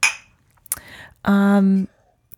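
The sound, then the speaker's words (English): A bright glassy clink of glasses raised in a toast with guava mimosas rings out and fades, followed by a softer knock, then a sustained voiced tone from someone. The sequence is brief. “So, yes, that is our drink that we're having today. Well, cheers. Cheers.”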